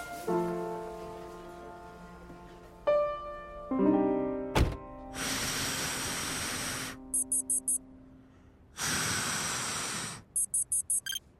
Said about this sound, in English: What's that? It's a ignition interlock device. Why do you have it? The car won't start without it. Why? Checking to see if I have alcohol in my system.